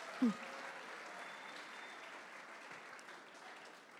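An audience claps steadily, a dense, even wash of many hands applauding at a consistent level throughout, with a brief low thump right at the start.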